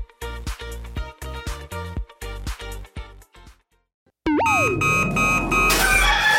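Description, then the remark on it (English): A run of short, evenly spaced bright blips gives way to a loud rooster crow that swells and stretches out, layered over a busy, noisy background near the end. “Damn rooster didn't crow.”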